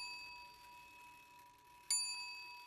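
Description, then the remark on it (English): A clock chime strikes once, a bright metallic ping rising over the soft, lingering ring of an earlier tone. It is fairly quiet, with no voices. “Scrooge checks the door as the clock chimes 12:15.”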